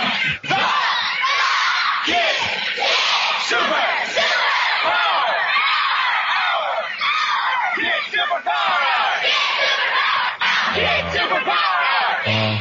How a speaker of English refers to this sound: Hey, are you ready for the big cheer? Are we ready? One, two,